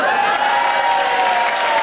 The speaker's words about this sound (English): The roof came off the building. The cheering, the crying, the yelling filled the room like a typhoon.